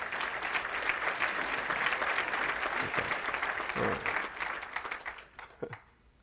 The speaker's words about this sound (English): I'm going to wait while y'all clap your hands.